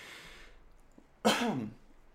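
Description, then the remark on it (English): A person gives one sharp, loud cough that trails into a raspy throat-clearing rumble, after a moment of soft breathy hiss. No talking. “And I'm gonna cough.”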